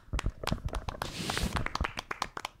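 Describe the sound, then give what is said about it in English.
A few people clap their hands together in quick, uneven bursts to celebrate a Knicks win, sharp crisp slaps overlapping for a couple of seconds with a brief rustly flurry in the middle, and no talking. “I think new podcast rule, whenever we get a win, we clap.”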